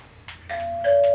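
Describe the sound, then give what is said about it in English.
An electronic doorbell rings with a couple of bright chime tones, the second one louder and sustained, ringing out clearly with no one talking over it. “Who could that be? Looks like someone is here. Go get the door”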